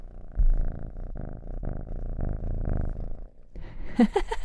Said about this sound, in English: And I have this silver, beautiful, silky boy named Monday on my lap, and he's purring away. So I wanted you to hear a little hello from Monday.